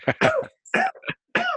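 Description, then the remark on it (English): A loud cough followed by harsh throat clearing, several rough bursts in quick succession with short pauses between them and no talking. “Are you right there, you cough?”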